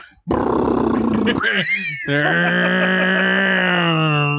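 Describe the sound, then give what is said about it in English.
A person imitates with their voice the very loud snore of a man sleeping in a backseat: a long, harsh rasping inhale, a brief gurgle, then a drawn-out, buzzing, roaring exhale, loud. “And we were like, holy shit, he's back there snoring like a motorcycle.”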